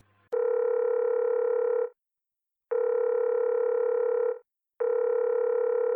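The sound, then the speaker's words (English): A loud, steady telephone tone from a phone call to law enforcement sounds in long bursts, about a second and a half each, separated by short silences, repeating three times with no one speaking. “I pick up the phone. I call law enforcement.”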